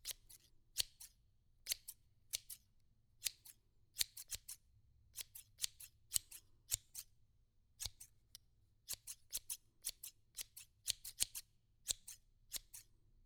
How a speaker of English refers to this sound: Here comes the story scissors.